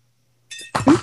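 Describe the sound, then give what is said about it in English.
A short crinkle of a plastic bag is followed by a quick clatter as several small items are emptied out of it onto a surface and land together, then the noise stops abruptly. “in your bag, scared the cat off by dropping things, you will have not a candle, but some gold stars or a gold star.”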